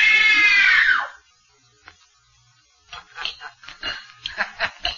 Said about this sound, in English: It was only a simple scream test, just to see how well … can follow direction.